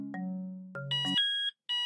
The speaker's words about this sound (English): Don't worry, that's just the door alarm. It's to make sure that nobody who isn't supposed to be here gets in.